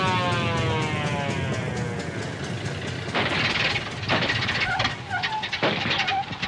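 A police motorcycle engine rumbles steadily as the officer waves a vehicle over, its pitch sliding downward as it slows, while a faint wavering siren rises over the motor noise in the second half.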